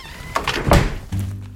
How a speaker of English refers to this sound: Now I'm just going to open the front door here, and you're going to follow me out.